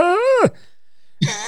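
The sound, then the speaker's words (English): A voice imitates an elk's mating call with a strained, moaning wail that rises and then drops sharply in pitch. A short silence follows before a second rough vocal cry begins. “Sounds like the fucking mating call of an elk, like...”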